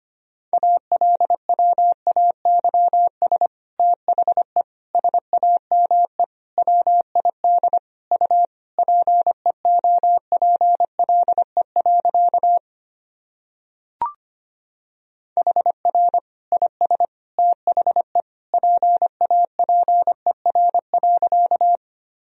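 Rapid Morse code at about 25 words per minute, sending practice sentences built from the top 300 words and abbreviations: a steady mid-pitched tone keyed into quick runs of dots and dashes, pausing briefly around halfway with a small click before resuming.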